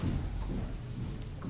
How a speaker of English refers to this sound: Sorry, that was really loud footsteps, wasn't it? Yeah, someone was stomping outside. Somebody wanted us to hear that.